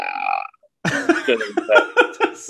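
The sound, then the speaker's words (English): A short, tonal belch is followed after a pause by a longer, loud, gravelly burp with a pulsing, rattling rhythm, with no talking. “Always good to burp.”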